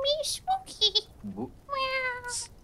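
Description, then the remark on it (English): A cat meows several times, a run of short, clear calls followed by a longer, drawn-out meow near the end, with brief breathy hisses between them. “Hey, kitty. Cute cat.”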